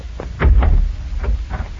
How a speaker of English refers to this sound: All right, Senor Valdez. Open the door.